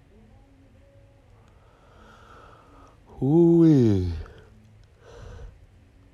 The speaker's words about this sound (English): Why am I yawning?